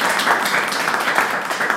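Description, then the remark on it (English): An audience applauds steadily at the end of a presentation, many hands clapping together in a dense, even patter that holds at a fairly loud level throughout without any voices. “I'd like to applaud both the presentation and the exemplary time.”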